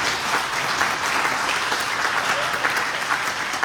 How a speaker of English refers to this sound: Praise the Lord. Can we give God a hand clap of praise in the house today?